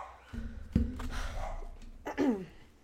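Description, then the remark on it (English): A couple of short dog barks, spaced apart, the second trailing into a whiny yelp, not loud, with no talking. “I'll have to edit my dogs again because life.”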